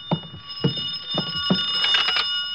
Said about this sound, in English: I could hear the phone ringing from somewhere inside, so I waited to see if anyone answered it. On the third ring, I tried the door.